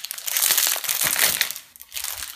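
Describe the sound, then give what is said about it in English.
A paper microwave popcorn bag crinkles and rustles as it is put into a microwave, in a steady run of crisp, dry crackles, briefly easing off before one more burst of handling noise. No one speaks. “Be right back, so I'm putting this in the microwave right now. What is this? It's popcorn. I'm putting the popcorn in.”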